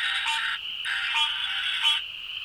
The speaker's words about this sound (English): So a lot of people call that the cowbell frog, like Christopher Walker. We need more cowbell. Well, they give you more cowbell because they can do up to 75 times a minute with that call.